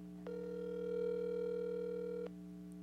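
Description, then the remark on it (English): A phone's ringing tone sounds once, a steady electronic beep held for about two seconds over a low constant hum, with no one talking, as a call is placed to someone's mother with the phone held up to a microphone. “You're really calling your mom. Yeah, put it up to the microphone so we can hear what she has to say.”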